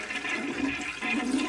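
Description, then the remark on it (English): A toilet flushing in a bathroom, a steady rushing and gurgling of water that stays loud and continuous throughout, with no voices over it, as someone tries to flush down a computer mouse stuck halfway in the toilet. “It's in the toilet, and I've been trying to flush it down, but it's like halfway in, halfway out, and there's water all over the place.”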